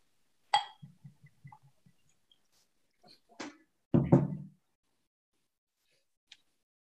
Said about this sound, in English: So now I'm curious, and we will put some of your Morris Monaco orange gin into the glass.